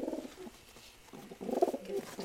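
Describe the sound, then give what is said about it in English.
Soft, throaty pigeon cooing, a low burbling coo that fades and then swells again into a fuller, rolling call toward the end. “The pigeon and the dove are kind of the same bird, except that one is gray and speckled and the other is”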